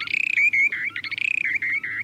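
A short-billed dowitcher's breeding song, given in flight as the bird glides slowly earthward from about 150 feet with its beak wide open: bubbling, trilling calls ring out clearly, rapid warbling pulses alternating with sustained rolling trills, repeated continuously, with no talking.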